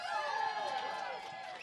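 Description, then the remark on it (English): An audience cheers and whoops loudly all at once, a dense wash of many overlapping voices that stays strong for the whole brief moment and eases only slightly at the end. “All right, please cheer if you think we should do a show about Australia.”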